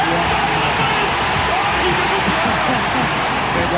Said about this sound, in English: Listen to that crowd.